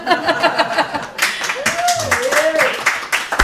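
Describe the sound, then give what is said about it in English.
A crowd breaks into steady applause right after a brief bit of talking, with scattered laughter and a few vocal exclamations mixed into the clapping. “You guys can clap when I graduate.”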